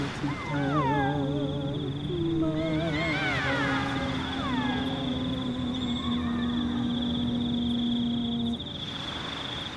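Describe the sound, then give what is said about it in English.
Whale calls fill the scene: long sustained moans layered with rising, swooping cries and warbling trills, loud, overlapping continuously before fading near the end. “We can make the whale's passing easier.”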